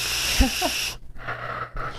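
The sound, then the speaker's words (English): A stifled cough held back in the throat: one short, muffled low thump with a couple of faint squeaky throat sounds over breathy hiss, followed by quiet airy breathing. “Oh, I almost did it there. Almost coughed.”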